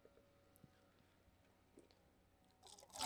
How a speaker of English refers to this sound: Dude, the sound you get from pouring. Look at this.